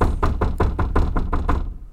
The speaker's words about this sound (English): The escorts led the dwarf down a colonnade, then stopped at a large oak door. One rapped at it sharply.